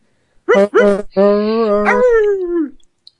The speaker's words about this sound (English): Hey, you think you can put the dog on the phone so we can talk to him? What? Oh, man. That was good. Try to get him to bark.